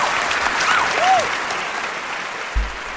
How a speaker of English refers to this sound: That's what I'm talking about. Round of applause. That's what I'm talking about.